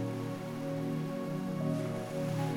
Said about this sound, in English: Bring to mind the supremely relaxing image of the clear turquoise waters of the Mediterranean Sea. Let the sound of the waves and the warmth of the sun calm your whole being.